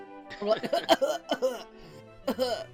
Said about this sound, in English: We're like old and coughing.